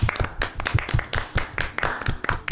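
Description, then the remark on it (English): A short round of applause for Chris: several hands clapping in a quick, uneven patter of sharp claps, fairly loud and steady, with no talking over it. “And I think a little round of applause for Chris there, everybody.”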